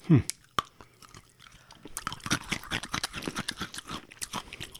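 Crunching of a chocolate-covered, butterscotch-mint toffee candy about an inch to an inch and a half long, chewed with the back teeth, with dense, irregular crackles and snaps building over the last three seconds after a quieter start.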